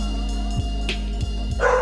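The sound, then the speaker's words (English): Dogs in a neighborhood bark a few times in short, scattered bursts, not very loud, over a steady low background hum, with no one talking. “There seems to be some kind of disturbance in the neighborhood.”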